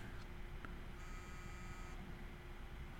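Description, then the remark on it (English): A work phone rings with an incoming call: a single electronic buzzing tone lasts about a second over a low, steady background rumble. It sounds fairly faint, and no one speaks. “I'm getting a call on my work phone.”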